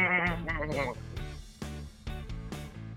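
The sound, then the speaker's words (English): A person imitates a sheep's bleat with a wavering, vibrato-laden voice, followed by a few choppy vocal bursts; fairly loud. “But it's like wool as in sheep's it's wool.”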